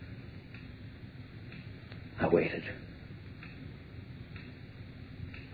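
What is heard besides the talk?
clock ticking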